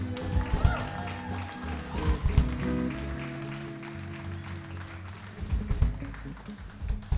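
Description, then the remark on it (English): An audience claps and cheers for the house band, a dense wash of applause that swells and dips over several seconds, with scattered voices and some lingering musical tones underneath. “Y'all give this house band another big round of applause.”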